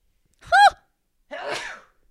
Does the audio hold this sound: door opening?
no